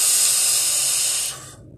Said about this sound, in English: Like that vape sound? Let me know, man.